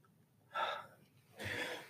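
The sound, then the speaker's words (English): A sharp inhaled gasp, then a single breathy sneeze burst a moment later, moderately loud, with no talking around it. “excuse me. Bless you.”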